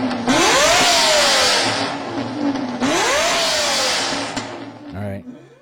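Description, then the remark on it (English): A powerful 5.7 12-cylinder engine of an early model car revs hard twice in quick succession, each rev climbing in pitch then easing off, loud with a throaty roar throughout. “It was one of the early model cars, 5.7 12-cylinder engine.”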